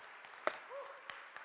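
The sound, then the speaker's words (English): Audience applause for the volunteers: a steady wash of many hands clapping, with a few sharper individual claps standing out and a brief tonal whoop or voice rising briefly above the crowd. “Give a round of applause for our volunteers.”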